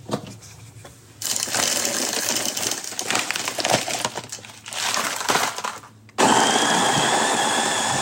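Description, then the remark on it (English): An electric coffee grinder grinds coffee beans in the morning for a French press, whirring in loud bursts, starting and stopping a few times with rattling, gritty beans, then running steady and higher-pitched at the end. No one speaks. “So I grind my coffee because I'm a diva.”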